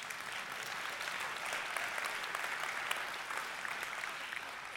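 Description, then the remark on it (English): An audience claps steadily throughout, a dense, even wash of many hands with sharp individual claps flickering through, sustained at a moderate level with no voices standing out. “You should totally clap.”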